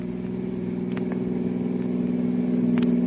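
car engine accelerating

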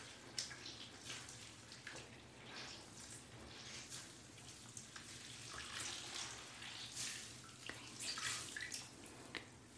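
water running

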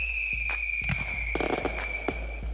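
fireworks exploding

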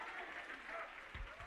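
audience hand clapping

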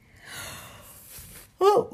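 yawn

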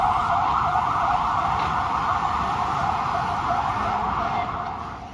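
ambulance siren passing

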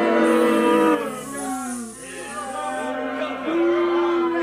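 crowd booing

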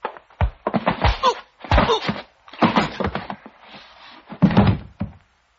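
door being opened

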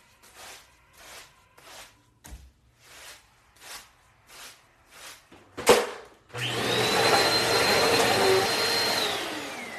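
vacuum cleaner running

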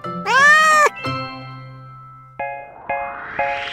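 cat meowing

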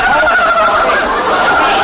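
turkey gobbling

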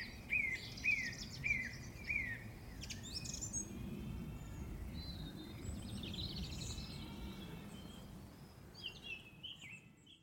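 song thrush singing

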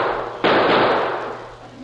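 gunshots

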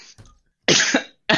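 coughing

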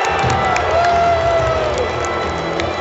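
arena crowd cheering

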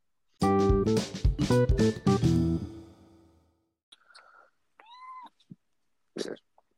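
cat screaming and meowing

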